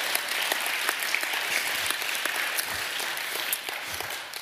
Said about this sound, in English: How many of you love him? No, clap. Come on.